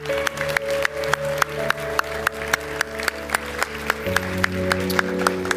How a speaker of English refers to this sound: Can we just give the Lord a clap of praise this morning?